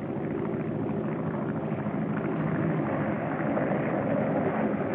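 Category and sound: vehicle, airplane engine approaching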